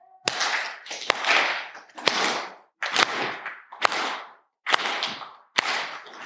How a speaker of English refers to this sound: So with every clap, you're both going to take a step. Hopefully, you'll meet back roughly in the middle. Let's try that.